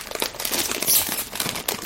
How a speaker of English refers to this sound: I like there to be more seasoning, and I'm hoping that the Chex Mix Bold will be just that. Bold. See how the bag opens.